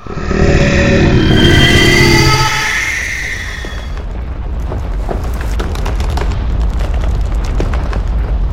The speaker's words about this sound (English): And the next morning, you're all awakened to the sudden shaking of the earth, a loudening roar, and what sounds like the collapse of a building.